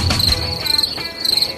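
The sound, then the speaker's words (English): A steady, high-pitched chirping of crickets pulses in quick repeated trills, fairly loud, with no voices present. “You weren't going to hear crickets.”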